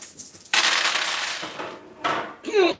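A burst of loud clattering, rattling noise as luck dice are thrown and tumble across a surface during a dice game, followed by a brief second rattle and a short voice sound at the end.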